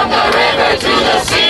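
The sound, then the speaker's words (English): A loud protest crowd at the National March for Palestine chanting in unison, a dense roar of many voices rising and falling in rhythmic phrases with brief dips between them. “I'm out here at the National March for Palestine”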